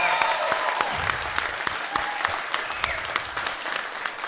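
crowd, comedy club audience applause

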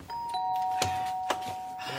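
household object, doorbell chime ringing

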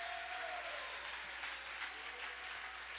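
crowd, audience clapping hands

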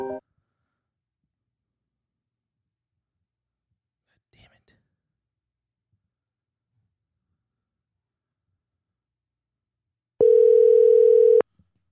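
fault, dial tone

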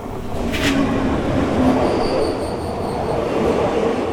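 vehicle, train arriving

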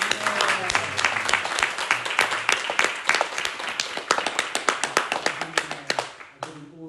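crowd, huge round of applause

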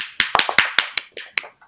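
crowd, hand clapping applause

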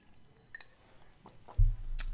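household object, coffee cup clinking

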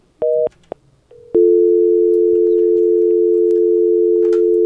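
signal or alarm, phone call ringing tone

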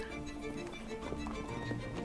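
sound effect, horse hooves clip-clopping

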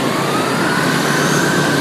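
vehicle, loud bus passing by

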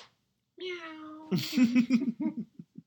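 animal, cat meowing

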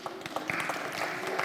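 crowd, round of applause

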